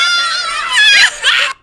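Girls scream in loud, shrill, high-pitched bursts, with a brief dip before one last rising shriek that cuts off abruptly, as one cries about her purse after a man grabbed her bag at Nordstrom Rack.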